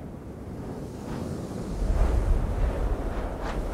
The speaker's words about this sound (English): Oh, wow. Do you hear that sound? A big winter storm has hit in the middle of the night.